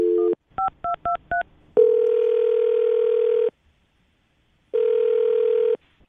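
A quick series of keypad dialing beeps, then the steady electronic ringback of a call going out from the Brook and Jubal in the Morning radio show: one long ring, a pause, and a second ring, clear with no talking.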